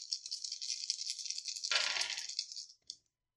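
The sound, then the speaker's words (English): Dice rattle steadily in a cup or hand for a couple of seconds, clatter loudly as they are thrown, then settle with one last small click. No one speaks. “Yeah, go ahead and roll quick.”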